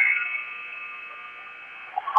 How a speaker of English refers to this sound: He got off a three-pointer right before the buzzer, and he made it. So it's an 11-7.